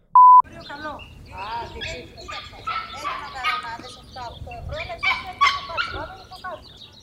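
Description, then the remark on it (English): Birds sing busily outdoors on a warm day, a steady stream of bright chirps and warbles over a low background rumble. A short electronic beep sounds at the very start. “It's so bad that it's warm and birds are singing and people are happy talking.”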